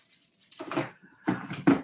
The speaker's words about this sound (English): Man, I just dropped my phone. Jesus Christ.